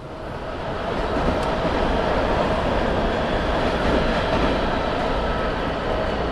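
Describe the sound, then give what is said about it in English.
A loud, steady rumble of a subway train fills a metro station, a dense low roar with a faint metallic hiss, holding constant for several seconds with no voices. “We are going down the escalator to get ourselves on Metro, which means we are, like, basically home, which is kind of amazing.”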